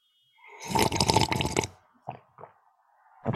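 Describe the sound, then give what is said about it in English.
A loud, wet, noisy slurp of alphabet soup lasting about a second, followed by a few brief, softer mouth smacks and gulps, with no talking. “Well, let me see what slurps into my mouth.”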